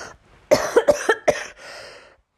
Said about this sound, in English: Guys, I'm so sorry. Let me get some water. I am coughing in your ear and I'm not meaning to. But man, the weather here in Utah is so arid.